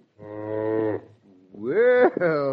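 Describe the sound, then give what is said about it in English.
A friendly cow on a porch moos twice, a long low drawn-out bellow followed after a brief pause by a louder, rising moo that breaks and continues. “No, she's a right friendly cow, ma'am, right friendly.”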